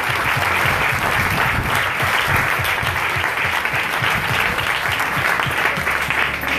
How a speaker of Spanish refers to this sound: Tengo un aplauso honrando al Padre y al Hijo del Espíritu.